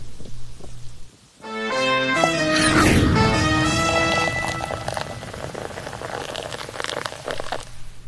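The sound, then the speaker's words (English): Heavy, steady torrential rain from a hurricane roars in a dense hiss throughout in Shallotte, with voices rising briefly over it in the middle before the downpour carries on alone. “now in Shallotte, but just a short while ago we showed you this torrential rain.”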